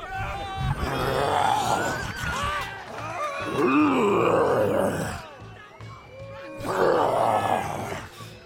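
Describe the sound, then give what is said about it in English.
A person roars, growls and screams like a monster in three long, loud, strained bursts with short breaks between, with no words spoken. “Their gleeful faces turn to horror as you scream and roar, covering them in spittle.”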